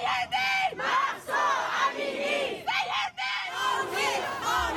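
A large crowd of hundreds of protesters in front of the U.S. consulate in Vancouver, Canada, at a protest over Iran's morality police, chants in loud, rhythmic bursts, many voices shouting together in repeated phrases with brief pauses between them.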